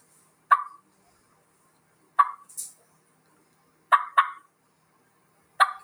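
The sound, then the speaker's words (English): Sharp, clipped turkey clucks from a hand call, sounding singly and in a quick pair, clear with short pauses between and no talking. “So here's what a cluck would sound like.”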